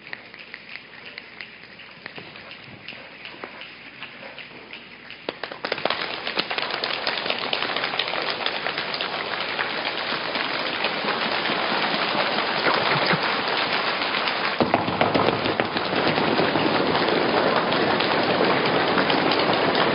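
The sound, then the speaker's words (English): An audience imitates a rainstorm by patting with hands and stomping feet, starting as a soft rustle, then swelling around five seconds into a dense, steady roar of patting and stomping that surges louder near fifteen seconds. “And then I'll come over here, and then we'll pat, and then I'll come over here again, and we'll stomp, and we're going to bring rain.”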